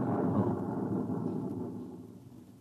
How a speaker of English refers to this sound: You see, sir, it takes a while for the vibrations of an explosion to travel 3 miles and then reach through 15 feet of concrete.